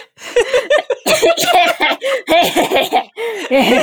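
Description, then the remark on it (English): A loud run of coughing mixed with breathy laughter, several sharp bursts tumbling together over a few seconds, with no clear speech. “I did a cough break before we started.”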